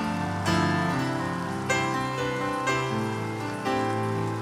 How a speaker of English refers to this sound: Give the Lord a mighty, mighty, mighty, mighty hand clap of praise. Come on, come on, come on, somebody. Clap your hands like it is done.